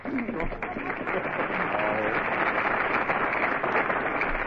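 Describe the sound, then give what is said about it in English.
A studio audience breaks into steady, sustained applause, a dense wash of many hands clapping at even loudness for several seconds with no break. “All right, folks, you made your applause. Now lie in it.”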